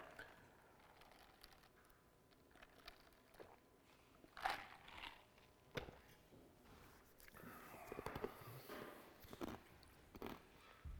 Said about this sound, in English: Sorry, crunching on the ice in the microphone.